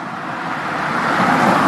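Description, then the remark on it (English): Road traffic of cars and lorries speeds by, a broad whooshing roar that swells steadily louder as a vehicle approaches at speed, with no voices present. “My son is 8 months old, and we like to sit in the window and watch the cars and the lorries go by, and we do notice that they zoom past really, really quickly.”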